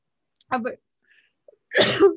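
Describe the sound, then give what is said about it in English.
Two harsh, forceful, loud coughs from a person having a coughing fit, separated by a short quiet gap, with the second burst longer and rougher than the first. “Sorry, I'm starting to have my coughing fit way too early in the day.”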